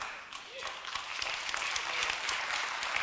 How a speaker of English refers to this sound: And so I don't even know what to do when y'all clap. Like, it's so weird. I'm just like standing here and I'm like, I want to keep talking, but I'm like, they can't hear me.